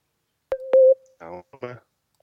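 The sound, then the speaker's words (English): A couple of sharp electronic beeps and a short steady tone cut through a phone line, followed by brief garbled, broken-up voice fragments as the call audio drops out. “It just beeped out for a second.”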